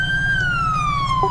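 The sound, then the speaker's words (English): A police SUV siren wails loud, a single steady tone sliding slowly downward in pitch over a low engine rumble, with no voices, during a siren check on an unattended SUV sitting in the middle of the road. “Someone left it, need a siren check on the unknown vehicle sitting in the middle of the road.”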